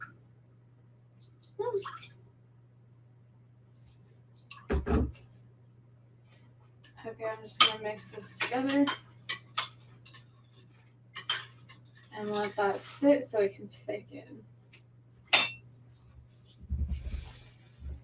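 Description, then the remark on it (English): A spoon stirs batter in a bowl, clinking and scraping against the sides in irregular bursts, with quieter gaps between and a steady low hum underneath. “Okay, I'm just gonna mix this together and let that sit so it can thicken.”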